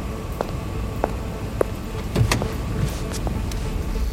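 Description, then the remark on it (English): Someone getting into a car at the Executive Valet: scattered clicks and light knocks, a firmer thump in the middle, and soft shuffling over a steady low rumble of vehicle ambience. “Your car. Get in, Lisa.”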